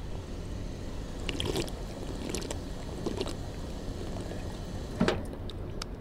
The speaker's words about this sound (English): And you know, before I go any further, I'm actually a little thirsty, so I'm going to take a sip from this drinking fountain right here.